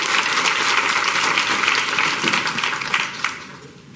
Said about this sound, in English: So I will wrap up and just please join me in giving our panelists a round of applause.